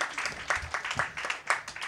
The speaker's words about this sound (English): You want a round of applause too? I got lots of rounds of applause.